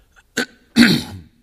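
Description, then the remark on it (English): A dry cough from a person with a cold: one short sharp burst followed by a longer, rougher hacking cough that trails off, with no talking around it. “You can bear with me because I've had a cold all week, and it has reached the cough stage, which is the worst.”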